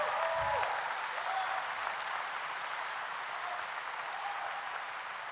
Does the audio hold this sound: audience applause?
yes